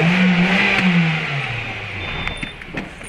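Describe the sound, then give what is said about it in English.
A remote control car's engine revs with a loud whine, its pitch gliding downward as it winds down, leaving a quieter buzzing hum with a few faint clicks near the end. “Is that a remote control car?”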